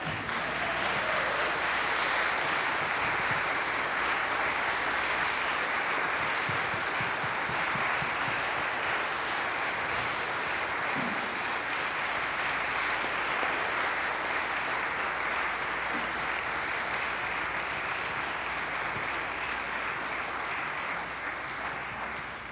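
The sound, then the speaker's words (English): Sustained applause from a large audience at the end of a business session, a dense steady wash of clapping that holds at full strength for over twenty seconds before easing slightly at the end. “so we can give him one more round of applause when he gets here.”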